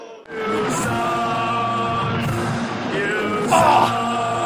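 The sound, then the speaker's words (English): The studio audience of the wrestling show Stick to Wrestling boos the host in a long, sustained low drone, holding steady throughout and briefly swelling louder with a higher yell near the end. “Hey! No booing! Do not boo me!”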